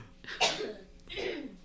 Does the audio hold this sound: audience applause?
no